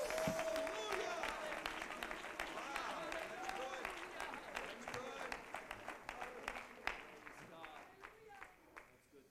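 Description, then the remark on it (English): A crowd claps steadily, dense applause that gradually thins into scattered, distinct hand claps toward the end. “Somebody clap your hands and declare it right now.”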